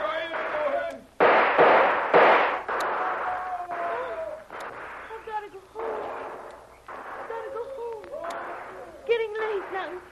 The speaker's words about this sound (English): Now they're shooting wild. Trying to cover their advance.